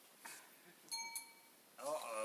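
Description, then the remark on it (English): An iTunes software alert, asking for a password to be entered, gives a bright, ringing electronic beep with two quick onsets that hang briefly in the air. A person's voice starts speaking right afterward. “But that beeping is because iTunes wants me to put another.”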